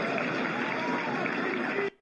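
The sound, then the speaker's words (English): A large crowd chants "Veep" or "VP" as Vivek embraces Donald Trump, a loud, steady roar of many voices that holds for about two seconds before cutting off abruptly. “Okay, so the crowd chants Veep or VP, it sounded like to me, when Vivek went back to embrace Donald Trump.”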